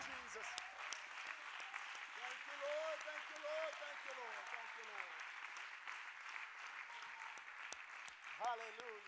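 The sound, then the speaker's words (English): A large church audience claps steadily for several seconds as an amen after a prayer, a dense, continuous wash of applause with a few voices calling out over it. “And why don't we say amen by clapping our hands one more time unto the Lord.”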